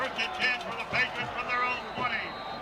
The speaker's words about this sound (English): This Riverdale crowd has gone nuts. Student section across the way. Jumping in the air. You can probably hear them on our crowd mic.